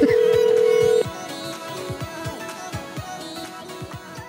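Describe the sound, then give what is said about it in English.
A steady, loud telephone dial tone hums for about a second, then breaks off into a quicker patter of short tones and soft thumps, like a number being dialed over faint background sound, as a caller dials to call a woman back. “Hold on, I'll call her back before she works out what's going on.”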